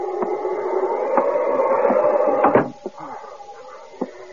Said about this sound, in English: Just open the door and go in.